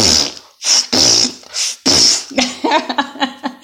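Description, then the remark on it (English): A voice imitates a manual air pump inflating an air mattress, making a string of loud, sputtering fart noises with the mouth: several short bursts, then a longer rattling one, with no actual talking. “And every time we would pump it, it would make a sound of farts.”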